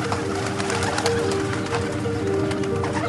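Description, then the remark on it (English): Birds fill the scene with steady cooing like pigeons or doves, layered over a dense, busy chorus of chirps and rustling that stays fairly loud and constant throughout. “And the birds came and devoured them.”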